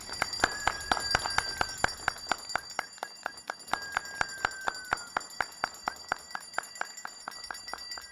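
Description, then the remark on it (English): Neighbors in Manoa make celebratory noise outside their houses at 7 in the evening to cheer on healthcare workers fighting the pandemic: a steady, fast rhythm of metallic clanging and clinking runs throughout, over sustained high bell-like ringing tones, with no clear voices. “You're listening to a handful of neighbors who meet outside their houses every night at 7 on the dot to cheer on healthcare workers fighting the pandemic.”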